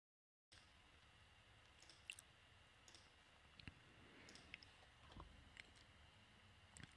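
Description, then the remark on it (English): Someone takes a quiet sip of water: soft wet mouth clicks and a faint swallow scattered over a few seconds of near-silence, with no talking. “But let me take a quick sip of water and then we will go right into the next topic.”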